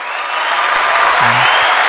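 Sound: applause clapping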